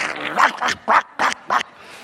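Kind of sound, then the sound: vocal imitation, voice imitating dogs barking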